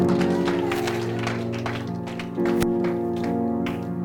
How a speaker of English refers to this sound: Clap for Jesus. What a family!